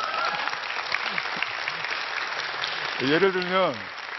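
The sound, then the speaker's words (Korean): A crowd applauds in a dense, steady patter of clapping from start to finish, and a voice briefly speaks over it near the end. “박수 쳐주세요.”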